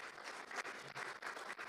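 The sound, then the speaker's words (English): A crowd claps together in a steady, dense wash of applause that sounds soft, continuing without a break and with no voices over it; a church audience applauding its setup team. “Hey, let's give a round of applause for our setup team, okay?”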